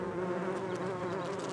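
honeybees buzzing

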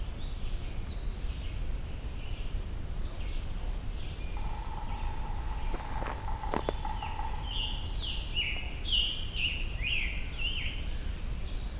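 pileated woodpecker drumming

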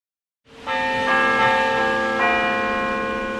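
church bells ringing

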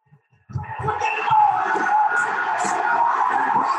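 wrestling arena crowd cheering

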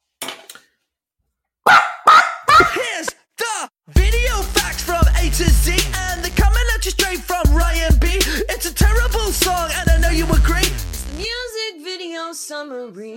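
dog barking

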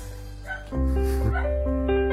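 dog barking in background

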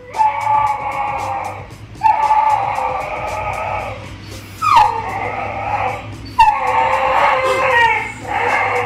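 dog howling and whimpering

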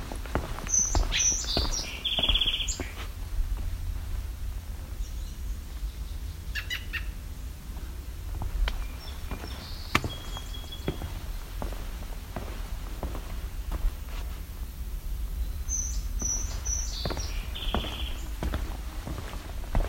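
song sparrow call

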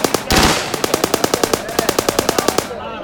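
gunfire

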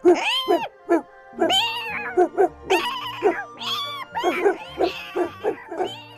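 cat meowing and yowling

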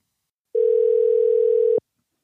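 telephone dial tone

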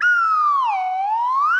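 slide whistle being played

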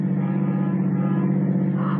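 car engine driving

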